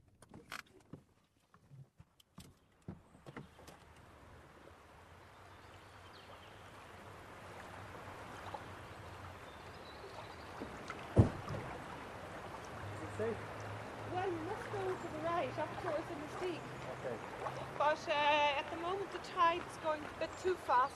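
River water laps and sloshes steadily against a boat slip on the River Nore just outside Inisteague, a continuous wash that grows louder after the first few seconds, with occasional knocks and a low hum underneath.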